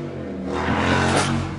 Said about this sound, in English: Thanks, motorcycle, for interrupting that moment.